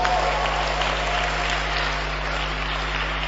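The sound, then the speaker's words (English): An audience in a church claps steadily and continuously for groups of the church as they are named, a dense wash of many hands at fairly even loudness throughout, with a low electrical hum underneath and no clear voices. “Those who are clapping, I am asking God to give you more blessing.”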